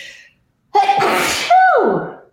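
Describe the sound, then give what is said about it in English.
A loud sneeze: a sharp intake followed by a forceful, breathy burst with a rising-then-falling vocal tone at the end. No talking accompanies it. “Bless you.”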